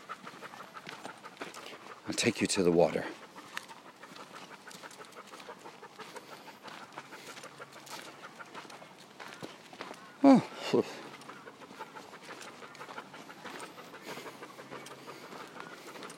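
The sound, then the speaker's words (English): A dog pants steadily and rapidly for the whole stretch, a quick rhythmic huffing, its tongue stuck far out, while a person speaks briefly over it a couple of times. “never seen you stick your tongue out that far.”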